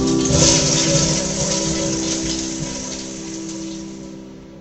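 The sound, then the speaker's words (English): A toilet flushes with a loud, steady rush of water that starts strong and gradually tapers off over several seconds, with no one talking. “Sitting on the toilet. Now flush.”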